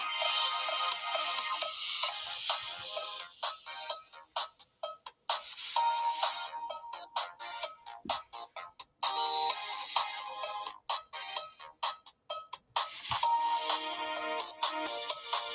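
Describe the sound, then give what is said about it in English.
The music of the Llama Bell emote in a video game: a bright, jingly tune of ringing bells plays in quick rhythmic bursts with short gaps between phrases, high-pitched and fairly loud, with no voices over it. “The Llama Bell emote.”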